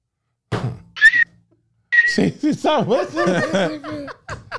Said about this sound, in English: Can you whistle out that side too?